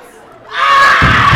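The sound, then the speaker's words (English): An audience, prompted by the host, breaks into loud, sustained screaming and yelling after a brief quieter moment. Dull low thumping joins in partway through as they bang on a wall with their hands. “I just want to go over to the wall, everybody, and just start banging on the wall and just scream just for a few seconds.”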